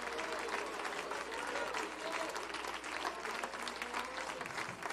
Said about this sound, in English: If you believe that, I want you to clap your hands and lift your voice.